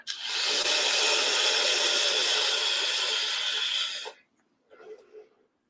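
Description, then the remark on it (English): A pod mod vaped at its maximum power setting of 80 gives a loud, steady sizzling hiss for about four seconds, then cuts off abruptly, followed by a short, softer breathy exhale. “So let's see how the coil performs at the maximum power this pod mod is capable of.”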